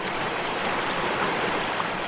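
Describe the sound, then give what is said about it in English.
Steady rush of a flowing creek, a continuous bubbling wash of water with no breaks and no voices over it. “Picture yourself standing by a creek or a small river flowing through a forest or a glade of trees.”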